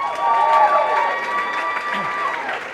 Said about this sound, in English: could you give that priest a round of applause?